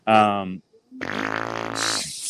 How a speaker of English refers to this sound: Shower fart game of the week.